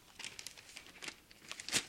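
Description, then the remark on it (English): Quiet crinkling and rustling of a sheet of paper being handled before it is lit with a match to show quenching, a run of soft irregular crackles ending in a slightly sharper crumple, with no voices. “Here I have a box of matches and I have a sheet of paper.”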